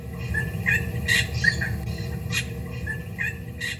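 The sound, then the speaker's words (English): A regent honeyeater sings a borrowed song of other bird species: short chirpy whistles and three harsh, scratchy bursts spaced about a second apart, over a steady low rumble. “So they've started to mimic the songs of other species of birds.”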